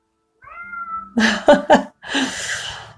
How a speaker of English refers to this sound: Oh no, there's a little kitty shut outside the door.